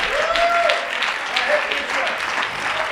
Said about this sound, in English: Can y'all say amen? Clap your hands. I mean, let me know you're with me. Let me know you understand.